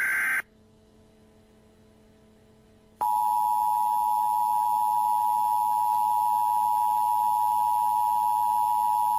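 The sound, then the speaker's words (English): A United States Emergency Broadcast System alert tone: a short high beep, a brief pause, then a loud, steady electronic tone that drones on without a break until the end. No voices are heard. “God, that beeping.”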